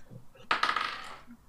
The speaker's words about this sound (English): Oh, it's the first dice roll of the game, innit?